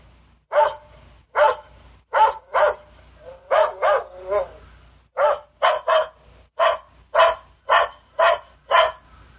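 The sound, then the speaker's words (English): An Alexa guard dog skill, set to patrol, plays a looped recording of a dog barking repeatedly in a steady rhythm, around fifteen sharp, loud barks in quick succession with short pauses, over a faint low hum. “And it should come back on with some more dog barking here in a second.”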